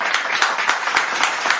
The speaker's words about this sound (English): Clap it up.